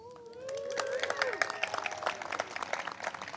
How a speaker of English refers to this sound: So we cheered at the baptism. We're going to cheer for the dedication. So for each of these kids, as I say their names, why don't we all, and you guys can cheer for each other as well.